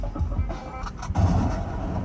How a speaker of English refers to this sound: What is going on? Fucking construction truck, driving hella slow up the fucking hill.